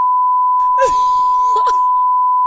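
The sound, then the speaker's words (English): A man's voice imitates a steady, high-pitched censor beep in place of a mobile phone number, droning for a couple of seconds without a break, while a man's voice groans and strains loudly over the middle of it. “I'll have to teach you how to do the beep.”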